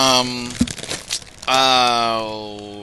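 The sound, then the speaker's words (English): A short, crisp rustle of paper as a page of a comic book is flipped, sitting between stretches of voice with talking before and after it. “Keep turning the page.”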